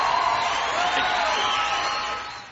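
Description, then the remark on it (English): A short burst of canned crowd noise, a free downloaded three-second applause clip: a dense wash of cheering and clapping that holds steady for a couple of seconds before tapering off slightly at the end. “That was the can, you know, crowd noise that I went and downloaded.”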